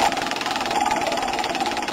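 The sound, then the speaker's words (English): A prize wheel of discussion topics is given its first spin, making a rapid, steady rattle of clicks blurring into a dense whirring buzz that holds fairly loud and even for about two seconds, with no voices. “I'm going to give it the first spin here.”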